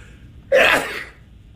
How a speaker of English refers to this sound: And finally, here is sneeze number five.